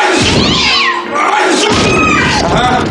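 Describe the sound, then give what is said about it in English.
A cat yowls loudly, a drawn-out wailing cry with sliding, wavering pitch that carries on for several seconds with only a brief dip partway through. “Do you have a cat?”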